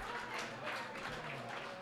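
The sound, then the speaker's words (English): An audience of Bearcat fans applauds steadily for Terrence 'T-Rat' Gibson, a former Bearcat point guard, a dense wash of many hands clapping at once that holds at an even, moderate level throughout, with no clear voices above it. “If we all give him a big round of applause.”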